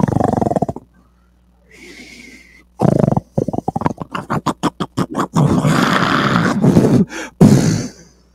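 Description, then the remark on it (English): A voice imitates Jesus snoring loudly: a rough snort, a brief hush, then a quick run of rhythmic snorting bursts building into long, rasping, drawn-out snores. “I told y'all the other day, we don't like to think about Jesus snoring.”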